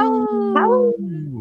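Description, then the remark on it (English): A voice imitates a timber wolf's howl: one loud, sustained call that rises, wavers and slides down over about a second and a half, with nothing else audible. “There we go. Timberwolves.”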